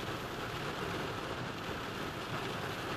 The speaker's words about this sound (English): As the rain goes pitter-patter, I'm thinking about these things.